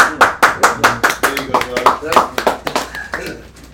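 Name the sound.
hands clapping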